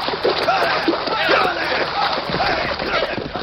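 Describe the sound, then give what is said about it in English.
Continuous churning splashes of water as men, pulled from their saddles, are dragged through a creek, fairly loud, with several men's voices shouting and grunting in the commotion throughout. “Then pull them from their saddles. Drag them through the creek.”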